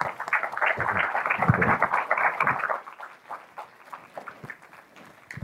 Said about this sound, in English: A round of applause for our guest speakers.